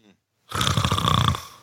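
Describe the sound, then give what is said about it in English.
After a brief pause, a person makes one long, rasping imitation of a snore, a loud, rattling vocal drone lasting about a second before trailing off. “Buddy Landell back in the day wouldn't have snored you out”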